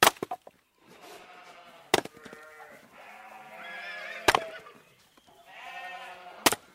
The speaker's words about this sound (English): Edward happily chopped wood in the barn